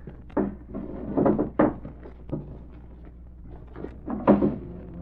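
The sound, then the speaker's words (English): A wooden desk drawer is pulled open with a series of hollow thumps and scraping rattles spread over a few seconds, its contents shifting inside. No voices are heard. “I saw one in the desk drawer. Might as well have a look.”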